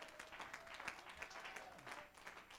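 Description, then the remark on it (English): An audience claps hands together to praise God in a steady, dense wash of applause that holds fairly even for a couple of seconds, with a faint murmur of voices beneath it. “Oh, clap your hands and give God praise.”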